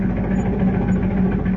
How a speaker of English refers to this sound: Cut the donkey engine, Kent. It's no use.